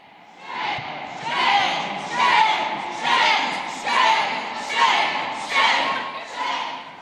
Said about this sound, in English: And as legislators left the committee room, there was a crowd outside, many of them protesters against this motion, and it got loud.